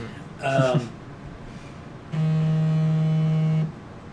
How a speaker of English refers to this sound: It's like an amber alert vibration there. Yeah, that's what it sounded like. It was an alarm.